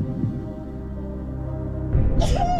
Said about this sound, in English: I'm going to sneeze.